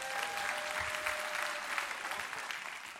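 A crowd applauds a pastor who brought the speaker water, clapping steadily for about three seconds in a dense wash of many hands at once, with a faint sustained tone running underneath early on.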